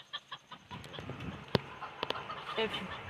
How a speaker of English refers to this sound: What's that? The chicken.